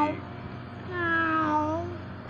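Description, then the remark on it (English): A kitten lets out a single drawn-out meow that rises and then falls in pitch, clear, over a steady low background hum. “All right, let's get into this little cat action.”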